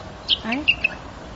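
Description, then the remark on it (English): A bird chirps briefly: a few sharp, high-pitched tweets in quick succession, mixed with a lower warbling note, moderately loud over a faint background hiss. “imagine, it's chirping however, and Sulaiman alayhi salam knows what it's saying”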